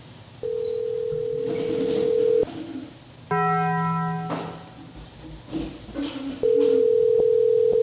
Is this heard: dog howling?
no